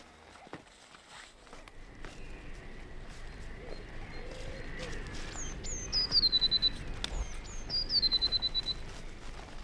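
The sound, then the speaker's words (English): Blue tits in the trees call in two short bursts of high, thin notes, a quick falling call running into a rapid trill, over steady crunching footsteps. “Every morning when I do my trap grounds, you can hear the blue ticks in the trees, and it seems almost that they are waiting for me to come and pre-bait the traps, and they seem to sort of follow you around as you go.”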